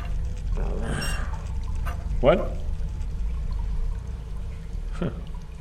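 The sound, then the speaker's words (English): Water drains with a steady pouring rush and a continuous low gurgle throughout, while a voice briefly speaks over it. “Maybe the water's starting to drain out there.”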